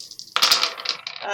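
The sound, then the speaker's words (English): Dice rolled on a table clatter and rattle in a quick burst of sharp clicks, fairly loud, then settle with a few lighter taps. “roll your dice.”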